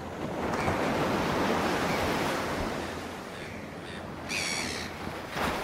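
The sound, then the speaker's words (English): Steady rushing surf fills the scene as ocean waves wash in at the water's edge, a broad continuous roar that swells and eases, with a brief bird call breaking through near the end. “Let's go to the water's edge and see what the ocean is doing today.”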